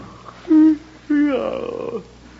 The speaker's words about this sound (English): Look, I saw him yawn.